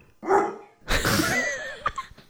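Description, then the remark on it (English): A dog barks twice from down below, a short clipped bark followed by a longer, rougher one that trails into a whining yelp, with no voices in between. “Oh, there's a dog down there, too.”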